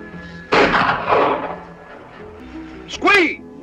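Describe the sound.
A loud gunshot blast with a rumbling, decaying tail, quickly followed by a second heavy burst, then a brief warbling voice-like cry after a short lull.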